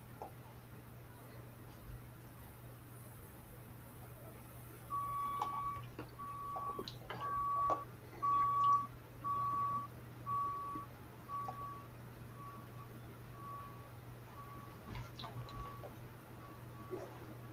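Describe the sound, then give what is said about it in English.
A two-wheel-drive pulling truck named Royally Insane, from Ravenna, Nebraska, backs up at a truck pull; its reversing alarm beeps in a steady, evenly spaced series over a constant low engine drone, growing louder for a few seconds before fading back toward the rumble. “Our next puller, two-wheel drives, Toria McDowell, comes out of Ravenna, Nebraska.”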